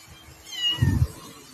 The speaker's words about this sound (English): We got a kitten problem.